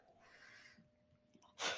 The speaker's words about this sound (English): I don't know if you guys can hear that, my dog is like aggressively snoring next to me. Which one is a Shadow or Riggs? Oh my God. He's like laying in front of our front door like he's some kind of guard dog.